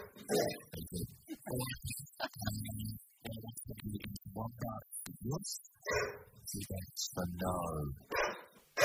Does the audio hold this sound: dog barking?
yes